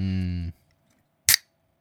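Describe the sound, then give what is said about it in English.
A can of grapefruit sparkling water cracks open with one short, sharp pop and a quick burst of hiss, preceded by a brief steady hummed voice and a moment of silence. “I've got one more can here of grapefruit sparkling water.”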